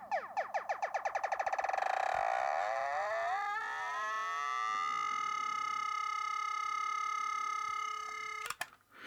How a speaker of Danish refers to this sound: And that a pulse, speeded up immensely, will in turn become a tone.